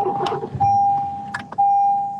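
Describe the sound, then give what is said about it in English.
A steady electronic car door chime tone sounds, briefly interrupted by a few clunks and rustles as a door opens and someone shifts to climb out of the car. “You jumping out of the car?”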